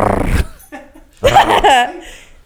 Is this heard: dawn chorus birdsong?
no